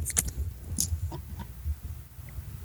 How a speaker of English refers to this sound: I'm going to crumple this paper.